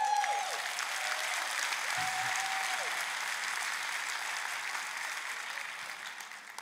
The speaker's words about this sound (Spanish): Date un aplauso.